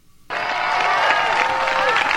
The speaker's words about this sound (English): And listen, they're all clapping.